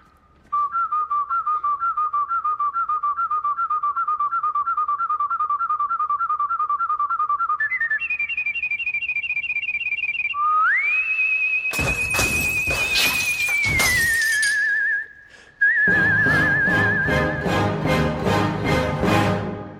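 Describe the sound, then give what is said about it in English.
Loud, virtuosic human whistling in a song carries a melody, running through rapid trilled notes, jumping higher, then swooping into a long held tone, with bursts of dense accompaniment joining toward the end. “Regardless, it's an amazing section in the song and some truly virtuosic whistling from one of the world's great whistlers.”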